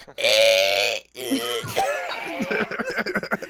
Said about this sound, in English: What I did wasn't quite a cough, it was more of like a groan.